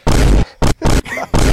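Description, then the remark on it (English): Four loud, rumbling explosion sound effects burst in quick succession, heavy, with a brief whistling, warbling tone between the third and fourth blasts. “Those hit, explosion sounds?”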